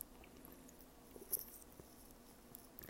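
Quiet mouth sounds of someone drinking water, with soft wet gulps and a brief sharper click midway. No one speaks.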